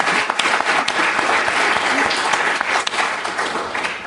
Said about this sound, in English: And Margaret Busby really is a legend. I feel we should have a special applause.